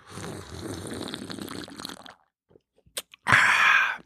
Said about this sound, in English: I got to say, too, that I put the slurp in there because I'm like, oh, that's everyone keeps talking about. Just keep slurping the Summersby.